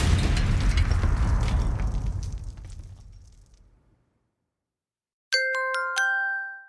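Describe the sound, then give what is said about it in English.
A loud, booming explosion rumbles and slowly fades over several seconds into silence, followed by a bright two-tone electronic chime. “Well, that could cause an explosion.”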